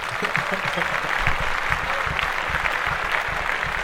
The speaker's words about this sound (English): I'm going to give the nigga some claps.